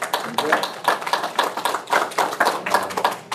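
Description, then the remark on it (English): An audience applauds: many hands clapping in a dense, steady burst that fills the whole moment, lively, with no voices rising above it. “But I think we all, a round of applause.”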